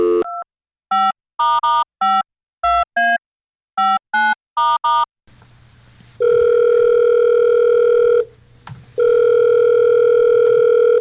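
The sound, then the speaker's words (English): A phone number is dialed for a prank call to a party store as a quick series of about ten short, beeping keypad tones. Then a steady, loud ringback tone sounds twice, with long buzzing rings separated by a brief pause. “It's time now for …'s shot at a prank call. Calling party stores.”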